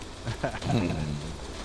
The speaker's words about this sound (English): Like that? Yeah. You like that rain?